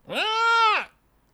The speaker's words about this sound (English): With a 19, Elianad, you hear the unmistakable sound of a pig screeching.